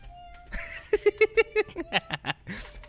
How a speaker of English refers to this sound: And a cat keyboard, which I use. Well, you want to, I'll put power on this. Well, you got to hit the cat. Wait, that's not it. You got to hit the cat. Where's the cat button? The cat's on the cat. Where's the cat button? Meow.